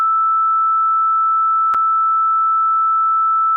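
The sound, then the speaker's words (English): A steady, loud censor bleep holds one mid-high pitch for about three and a half seconds, broken only by a brief click partway through. No voices are audible. “She's saying the real shit, but we're also censoring it.”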